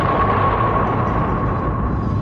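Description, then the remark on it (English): A slowed-down sonic boom effect as a bullet shot is taken: a deep, loud, drawn-out roar that rumbles steadily for a couple of seconds with a faint whistling tone running through it, no voices. “When you take your breath, then take your shot, we drop one of them slow-mo sonic booms.”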